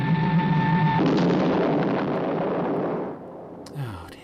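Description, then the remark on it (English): A Spectrum passenger jet's steady engine whine cuts off into a loud, roaring explosion as the jet crashes, rumbling on for about two seconds before fading, followed by a brief falling tone. “And again, another Spectrum passenger jet getting trashed.”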